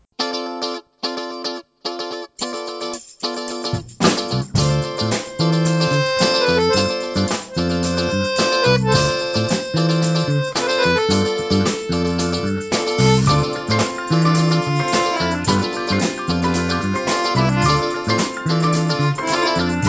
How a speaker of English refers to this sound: For now, don't go away. We'll be back right after this music.